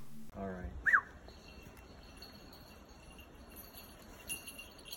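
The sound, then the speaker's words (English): A single short hawk cry, from a video of a person working with a hawk in Ireland, rings out near the start, brief and fairly loud, then fades into a steady outdoor hiss with faint high insect-like tones. “One time when I was in Ireland, I got to work with the hawk. And if I have that video, I'll upload it right here.”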